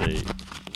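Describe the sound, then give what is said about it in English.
A chunky, beefy zipper on a pencil pouch is pulled in a few short, ratcheting bursts, briefly overlapping a voice at the start. “Yeah, it's a very beefy zipper.”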